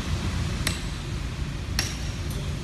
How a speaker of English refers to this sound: Just tearing up his Hollywood star. That's how it started, but smashing the star did not cool the emotions of the star smashers.